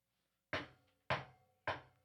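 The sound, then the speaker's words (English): Three sharp, resonant knocks land at an even, deliberate pace after a brief silence, each one loud with a short ringing decay, like knuckles rapping on a wooden door. “No, because I do know the people who have seen the lady in white, and they say they also hear, like, knocking at night.”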